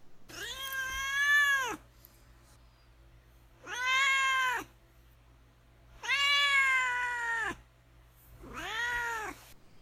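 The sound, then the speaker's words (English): A cat named Duarte meows four times in long, drawn-out, wailing calls spaced a couple of seconds apart, fairly loud over a low steady hum, with no talking. “Well, let's turn now to Duarte's corner and see what my cat Duarte has to say about all this.”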